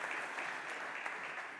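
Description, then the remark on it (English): An audience applauds steadily as a man is invited up to speak, a dense, continuous patter of many hands clapping at an even level for the whole short stretch, with no voices standing out. “If you could give him a round of applause.”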